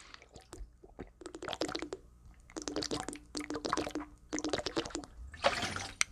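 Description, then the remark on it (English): Someone gulps water quickly and noisily from a gallon jug, with wet, glugging swallows and liquid bubbling up in the container, coming in several rapid bursts separated by brief pauses. “I guess I drink way too fast, and it ends up bubbling up.”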